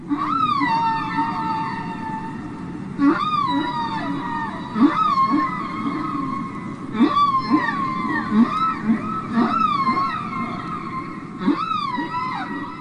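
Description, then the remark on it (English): Humpback whale song: rising and falling tonal cries repeat every second or two over a low rumbling undercurrent, moderately loud and continuous, with no talking. “The humpback, of course, as we mentioned earlier, is famous for its singing ability, but you say the ones off our coast aren't singing, really.”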